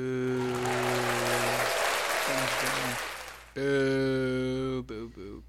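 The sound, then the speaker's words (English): A person booing loudly in long, drawn-out vocal tones, two sustained boos separated by a short break, over a noisy, crowd-like background. “Are you booing yourself?”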